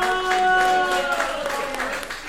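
A show audience applauds steadily for a couple of seconds for an audience member called up on stage, a dense wash of many hands clapping at once, with a faint sustained tone running underneath.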